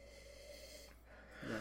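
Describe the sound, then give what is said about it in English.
Someone sniffs wine in a glass: faint, breathy inhaling, then a brief, stronger sniff at the very end. No voices accompany it. “Okay, you're sniffing it now. Yeah, give a little sniff.”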